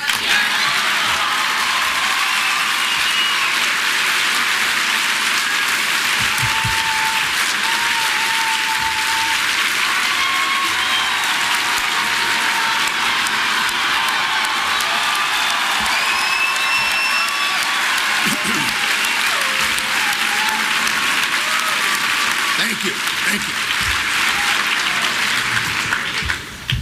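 Sustained, dense audience applause for the words "Liberty, freedom, and the pursuit of happiness" fills the whole stretch at a steady loud level, with scattered whoops and cheers rising above the clapping.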